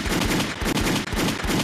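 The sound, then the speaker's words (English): Rapid bursts of loud gunshot sound effects, firing in a quick repeating rhythm like automatic gunfire, with no voices. “Gunshots in the chat.”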